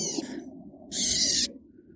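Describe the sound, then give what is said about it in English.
A Bewick's wren, being extracted from a mist net at the Coyote Creek Field Station, operated by the San Francisco Bay Bird Observatory, gives two harsh, buzzy scolding calls, a short rasp followed by a longer, louder one, over a low background rumble with no one speaking. “who's about to extract a feisty Buick's wren from a mist net at the Coyote Creek Field Station, which is operated by the San Francisco Bay Bird Observatory.”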